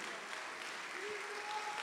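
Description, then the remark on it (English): An audience claps hands in a dense, steady wash of applause that holds at an even level throughout, with faint voices rising now and then underneath. “Clap your hands, lift your voice, magnify him.”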